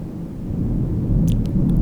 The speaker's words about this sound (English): It's thunder.